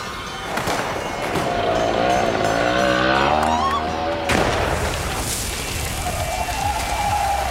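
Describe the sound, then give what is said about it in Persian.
A motorcycle engine whines upward and sweeps past in front of a car in a street, its pitch rising and then fading, all over a steady, loud hiss like pouring rain. “موتوری از مقابل ماشین مرتضی می گذرد”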